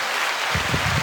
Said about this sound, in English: Round of applause.